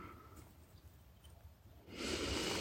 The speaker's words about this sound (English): So consciously breathing out old energies, old stories, old ideas, old grudges, breathing them out.